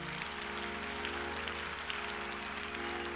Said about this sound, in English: Clap your hands and thank God.